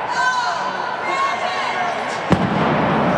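A single sharp cannon blast cracks out near the end, fired as a game is about to start, cutting through a steady roar of crowd noise and chatter that continues around it.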